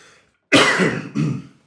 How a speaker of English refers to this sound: Apologies about that. I've managed to go the whole way without coughing.